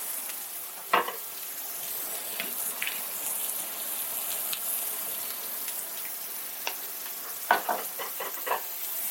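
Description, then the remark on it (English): Burgers sizzle in a pan with a drizzle of olive oil, giving a steady, bright hiss, punctuated by sharp crackles and pops, including a quick cluster of spits toward the end. No one speaks. “So a drizzle of olive oil to the pan, and now burgers are being added.”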